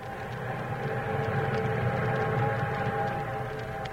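An eastbound train rumbles steadily along the tracks, a loud continuous low roar with faint rhythmic clatter and a sustained whistle-like tone running through it, with no one speaking.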